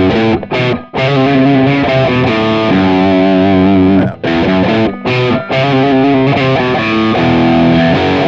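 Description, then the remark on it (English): A loud, heavily distorted electric guitar riff with effects, played in the style of a guitarist: sustained thick chords broken by a few short stops and quick picked notes, played alone with no one talking. “I'll play it as he would play it.”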